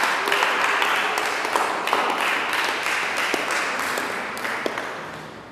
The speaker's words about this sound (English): Just clap your hands for Jesus Christ.